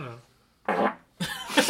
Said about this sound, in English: That was a perfect pitch fart. Stinky too, sorry.